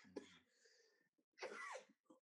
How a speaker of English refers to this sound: This is my normal asthmatic acid reflux cough, so don't worry about COVID.